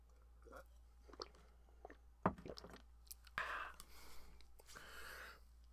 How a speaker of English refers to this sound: Because I get a sip of water.